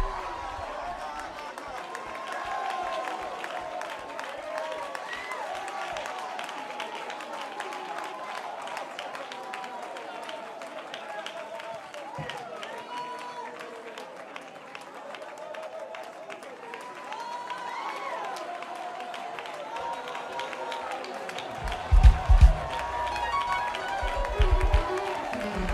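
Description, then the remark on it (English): An audience at an apostolic church service claps steadily for nearly half a minute, a dense crackle of many hands with voices calling out throughout, and a few heavy low thumps like stomping feet near the end. “Come on, this is a hand clapping, foot stomping, tongue talking, powerhouse, apostolic.”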